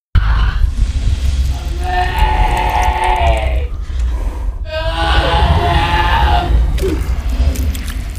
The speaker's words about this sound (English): Is this a bear that's screaming? Oh my god.